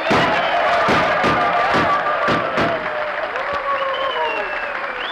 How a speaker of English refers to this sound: Well, how's that for an ovation, Jackson? Gunshots and everything.